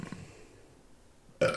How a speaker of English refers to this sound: That's how weak my burp is, people. And that I did mine with my mouth closed too.